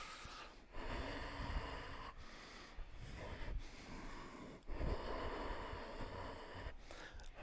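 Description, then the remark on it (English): Forceful, rhythmic breaths pump in and out as a breathing exercise, sharp nasal exhalations repeating steadily for several seconds with brief pauses between bursts, no talking. “And then you start breathing air, a fire builds, and then the cleansing process commences.”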